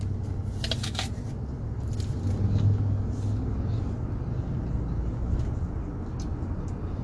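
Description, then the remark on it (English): Steady low rumble of cars driving by, a continuous traffic drone with faint higher scraping and rustling noises on top and no voices. “So, embodiment, I'm saying, like, these cars that are racing around, they're an analogy for our bodies”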